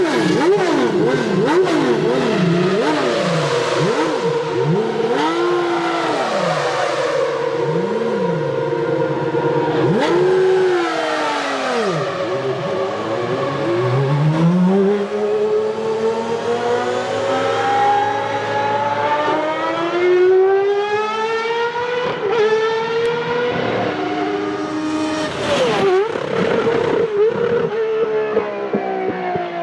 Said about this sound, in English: It had a Ferrari V12 engine, the one that used to be in Mansell and Prost's car, I think, when they drove at Ferrari. But it was bored out to 4 litres. Imagine that. Imagine the sound.